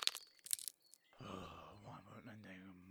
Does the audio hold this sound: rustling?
yes